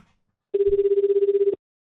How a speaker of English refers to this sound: I like hearing the different ringtones in the different countries, though. I would still say, though, America's ringtone is number one.